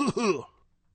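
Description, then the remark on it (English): A man clears his throat once on air at the sports radio station The Sports Animal, 95.9 FM and AM 610: a short, voiced two-part rasp, fairly loud, followed by near silence. “Will you talk for 2 seconds while I clear my throat?”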